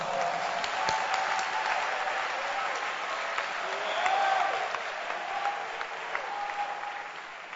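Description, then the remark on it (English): A church audience claps and applauds steadily for several seconds for the preaching pastor, a dense, sustained wash of many hands with faint crowd murmur and the odd voice rising through it. “Let's clap for him.”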